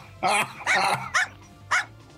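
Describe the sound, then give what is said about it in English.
A small dog, an angry corgi, barks sharply four times, two long harsh barks followed by two shorter yaps in an uneven rhythm. “It is it is a corgi. But it is angry.”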